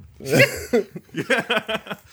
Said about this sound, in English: I coughed a lot, you know. You think? You've got a weird cough. You've got to get that checked.